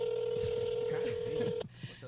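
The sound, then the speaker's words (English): A telephone tone sounds steadily for about a second and a half during a phone call that goes unanswered, then cuts off abruptly, with faint voices murmuring underneath. “Why is he not picking up his phone?”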